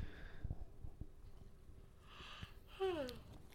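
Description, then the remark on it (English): A fairly quiet yawn: a long breathy inhale that ends in a short voiced sigh sliding down in pitch. No one talks during it. “Sorry, I had to do a yawn there.”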